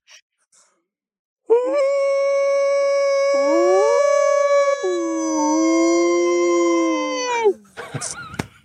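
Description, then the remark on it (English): A person imitates a dog's howl: one long, loud wail lasting about six seconds, stepping up and down in pitch before breaking off, followed by brief rustling noise. “you're very good at the howling because you fooled me.”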